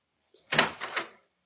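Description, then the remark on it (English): A door opening as an expected visitor arrives, a brief clattering rush of sound with a few quick thumps lasting under a second, then silence. “Oh, listen, that's the door.”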